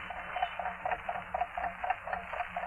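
A watch inside a package, heard through a stethoscope, ticks steadily and rapidly, roughly four even ticks per second, sounding muffled and boxed-in over a low background hum, with no voices.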